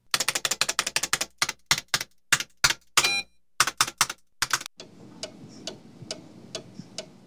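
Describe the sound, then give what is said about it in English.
A typewriter clacks loudly in quick, uneven bursts of keystrokes for several seconds, then stops, leaving a quieter, steady ticking like a clock against faint background noise. “I'll get right on it after I finish typing this.”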